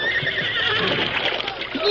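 A team of four horses harnessed to a wagon whinny and neigh amid a steady, rushing wash of river water as the current carries them away from the wagon, the cries rising over the broad churning noise, with a louder surge near the end.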